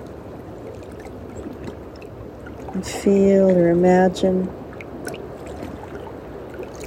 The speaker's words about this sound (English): with every little wave coming in here. The lapping of the water. The water is washing over you.